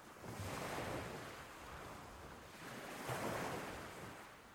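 Gentle ocean waves of cold, clear water wash ashore over sand and a person's feet at sunset in two soft, broad surges, folding into frothy white foam, a steady frothy hiss swelling and receding with a light wind rumble underneath and no voices.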